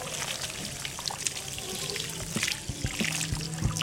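Warm water from a tap or shower head rinses shampoo out of a client's hair at the hairdressing salon of a Jewish residential home in Ilford, a steady splashing hiss that runs throughout with small shifts in the flow and no voices.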